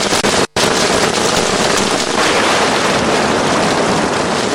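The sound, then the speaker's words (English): Steady, dense rainfall with an accompanying breeze fills the scene with a constant loud hiss, broken by one brief silent gap near the start, with no voices present. “This sound of rain and its accompanying breeze sends many to sleep, snuggling safely and comfortably in a firm textured bed.”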